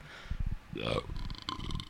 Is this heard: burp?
yes